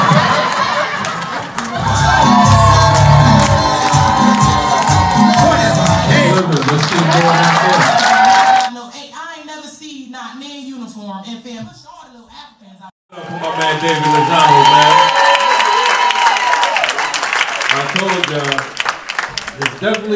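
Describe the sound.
An audience claps and cheers loudly for an MC, with whoops and shouts, the noise fading for a few seconds as voices speak, then swelling again into sustained applause and cheering.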